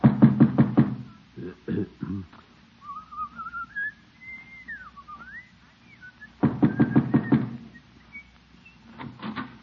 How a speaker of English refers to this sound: Just knock on her door and get it over with. All right, by George, I will.